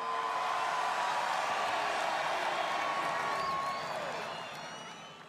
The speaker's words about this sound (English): Give another cheer up for your champion, Kansas City Chiefs.